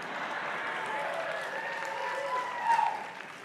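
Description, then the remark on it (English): An audience claps steadily for a few seconds in response to Mexican food being called the best food on the planet, a dense wash of overlapping hand claps with faint voices mixed in, swelling slightly louder toward the end. “A few of you who didn't clap, don't, okay?”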